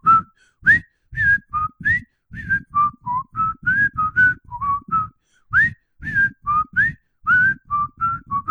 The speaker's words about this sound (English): Was it the tune to the Andy Griffith Show? I'll have to ask. She did not say. I kind of want to whistle it.